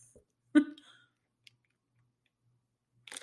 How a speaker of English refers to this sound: Okay, I just took a sip and I like watched the fruit so it didn't migrate through the tiny hole. See, it would be a benefit of having a straw to like not get the fruit.